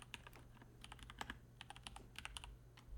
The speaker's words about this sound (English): What are you typing?